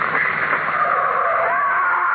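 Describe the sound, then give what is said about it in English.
A car skids with a loud, sustained, harsh tire screech that holds steady for a couple of seconds as it runs a person down, with no voices over it. “Come on, watch out. There's a car coming.”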